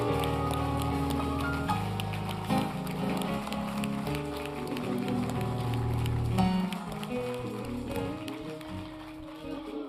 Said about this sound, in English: Let's give our speaker a round of applause. Let's give her a Cade Chapel round of applause.